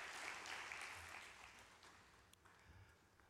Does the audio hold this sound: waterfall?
no